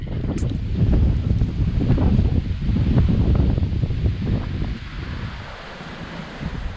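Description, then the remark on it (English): Strong wind gusts buffet the microphone in a steady, rumbling roar beneath the pier at Folly Beach, about 100 yards from the water, on a windy day of about 38 degrees with no snow. The wash of surf is faintly underneath. No one speaks, and the blustering eases slightly toward the end. “even when it's about 38 degrees and windy”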